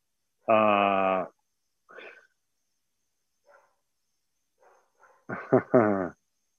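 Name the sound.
dog barking and whimpering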